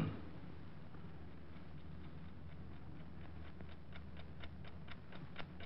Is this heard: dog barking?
no